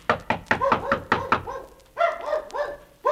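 A rapid series of about seven loud, sharp knocks on a door, followed by a few bursts of dog barking after a short pause.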